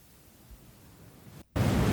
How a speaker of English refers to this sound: I just hear static.